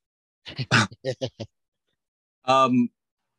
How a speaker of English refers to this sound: His name is Rocky the dog, and I love him dearly.